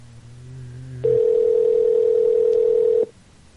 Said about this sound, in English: part of the show when the phone rings.